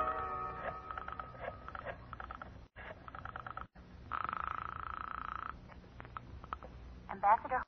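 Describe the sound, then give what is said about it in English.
A telephone being dialed to call a lawyer: bursts of rapid ratcheting clicks separated by short pauses, with a steady buzzing tone partway through, and no voices. “I'll get him on the phone right now.”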